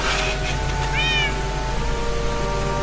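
cat meowing

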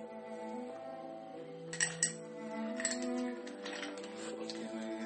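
dice being rolled

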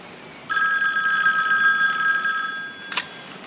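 telephone ringing

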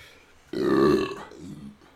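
burp

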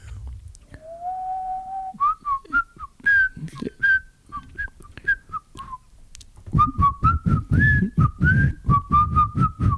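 person attempting to whistle

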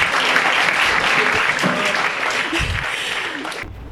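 audience applause

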